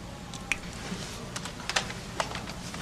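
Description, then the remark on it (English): A handful of sharp keystrokes tap out irregularly on a computer keyboard, a few isolated clicks and a quick cluster, quiet over a low background hum, with no one talking. “Just use the keyboard. The keyboard. How quaint.”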